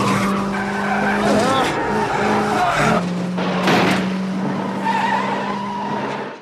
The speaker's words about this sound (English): And the whole thing culminates with our, quote, heroes driving the wrong way on the freeway, dodging cars and trucks, speeding furiously towards them.